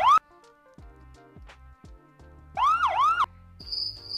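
A police siren wails in short bursts, a quick rising tone at the start and then a louder up-and-down yelp, with low thudding sounds and a thin high tone between. No one speaks.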